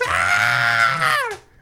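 A loud, sustained vocal scream holds steady for over a second, then bends downward in pitch and cuts off, leaving near silence. No talking accompanies it.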